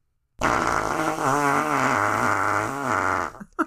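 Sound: fart sound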